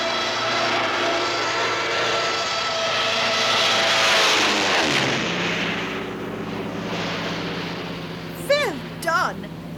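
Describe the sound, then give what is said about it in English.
A loud, steady airplane engine roars, its droning pitch sliding down midway as if banking, followed near the end by two quick, sharp descending whistling bursts. “Well, fortunately, this plane handles a bit better than a bomber.”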